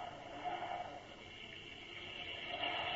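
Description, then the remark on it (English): A storm breaks at night: a steady, unbroken hiss of heavy rain pours down for the whole stretch, swelling slightly near the end, with no voices and no distinct thunderclaps. “Oh, the storm has broken at last. I say, listen to the rain.”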